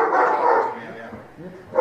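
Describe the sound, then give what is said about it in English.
An unhappy dog barks loudly in short bursts at the start and again at the end, with softer whiny, yelping sounds in between. “All right, we're going to go ahead and skip over this because the dog is not happy.”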